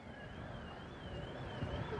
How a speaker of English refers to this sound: Someone's car alarm's going off. That's all right.